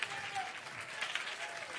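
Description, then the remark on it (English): A crowd at a religious service claps steadily together as a preacher urges them on, a dense wash of many hands at moderate volume, with faint voices blended into the background. “Come on, clap your hands.”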